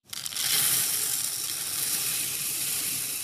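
Rice for dinner pours steadily into a bag from a bulk bin in the bulk bin section, a continuous bright, grainy hiss that starts abruptly and holds an even level for about three seconds, with no voices.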